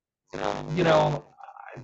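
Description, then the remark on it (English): A loud, drawn-out belch lasting about a second, deep and raspy, followed by a softer, higher vocal sound trailing off at the end. “which is the reason why she's no longer allowed in Denny's and IHOP and Bob Evans, because she sits there and eats and belches.”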